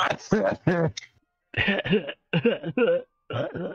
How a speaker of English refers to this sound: I'm about to cough. Oh no, he's coughing. Ugh. What kind of cough is that?